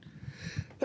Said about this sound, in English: I'm going to sneeze in a second, okay. So just so you know.